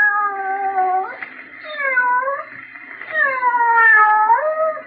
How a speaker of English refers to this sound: Hear that? Just a sound effect. But in your imagination, didn't you picture a cat meowing?